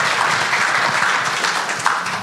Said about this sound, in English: You got to clap.